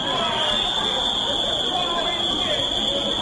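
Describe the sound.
Loud, sustained whistling from the opposition benches of the National Assembly as Kenyatta rose to speak, a piercing high tone held steadily throughout over a dense background of shouting and murmuring voices.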